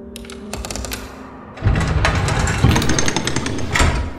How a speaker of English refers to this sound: The bars of the blood collector's cell retreated into the ceiling, the sound of bone meeting flesh whispering into the room.